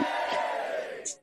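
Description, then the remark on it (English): An inserted sound effect: a brief, loud burst of crowd cheering and applause, a steady roar of many voices that swells briefly near the end before cutting off abruptly. “Insert applause here.”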